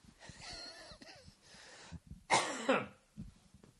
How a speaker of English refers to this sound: I don't think this cough is ever going to go away.